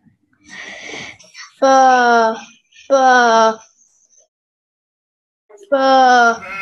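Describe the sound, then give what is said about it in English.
Sheep tended by a shepherd bleat three times, loud, each call a wavering, nasal cry lasting about a second, with a gap before the last. A breathy rustle comes just before the first. “These sheep aren't the most appreciative audience, aren't they?”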